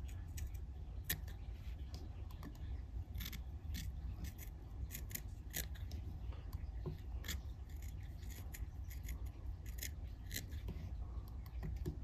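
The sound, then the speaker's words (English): Sharp scissors make repeated quick, crisp snips, trimming fly-tying material to form a tight fly body, in an uneven rhythm over a low steady background hum, with no one talking. “And I'm going to take a sharp scissors and I'm going to start trimming these.”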